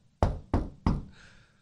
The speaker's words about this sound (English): Do you know how many cousins that be knocking on my door?